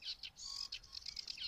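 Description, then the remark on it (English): A small migrant songbird, recently arrived from further south, sings a rapid, scratchy chattering song of repeated high notes and buzzy phrases, steady, with no voices present. “It does sound like I'm in some warm country in some marshland somewhere, and that's probably because they've recently arrived from further south.”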